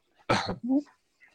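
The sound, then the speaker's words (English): A dog in the room gives a single loud bark, a sharp burst that trails into a brief yelping tone, then quiet. No one speaks over it. “The doggy getting on the conversation.”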